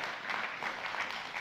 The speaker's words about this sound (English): Come on, let's applaud that.